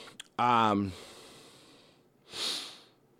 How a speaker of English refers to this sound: Sorry, I gotta keep yawning. I told you I'm tired, even though it's 9:08.